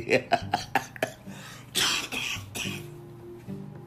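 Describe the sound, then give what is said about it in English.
A person trying not to cough: a burst of short, rapid coughs in quick succession, followed by two heavier, harsher coughs, then a quiet throaty hum as the fit subsides. “I'm trying not to cough.”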